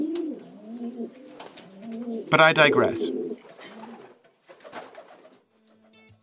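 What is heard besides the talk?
pigeons cooing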